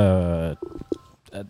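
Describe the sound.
A loud electronic phone tone rings out steadily for about half a second, then cuts off as people start talking, with a short burst of the tone returning near the end.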